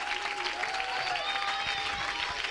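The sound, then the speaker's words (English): An audience in a church claps its hands in a dense, sustained burst of applause at the preacher's call, staying loud and even throughout, with a faint steady tone humming underneath. “If you want this dude dead, clap your hands and mean it with all your heart.”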